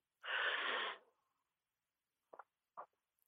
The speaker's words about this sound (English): And I'd love for you to just take a couple deep breaths. So we'll take some deep breaths together.